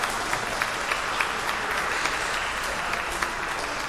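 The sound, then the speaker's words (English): A church audience breaks into steady applause for a member who turns 92 years old today, many hands clapping at once in a dense, even patter that holds for several seconds with no voices rising above it. “So when you turn 92 years old and you come to church, we're going to clap for you too, okay?”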